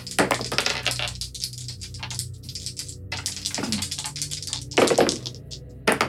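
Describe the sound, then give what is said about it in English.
Dice clatter and bounce across a hard tabletop during a game in a rapid, irregular series of sharp clicks and knocks, with a couple of louder impacts near the end, without speech. “Gosh, it keeps bouncing out.”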